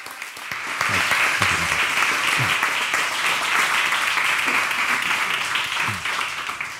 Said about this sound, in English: Please join me in giving a big round of applause for Hannu Rajaniemi.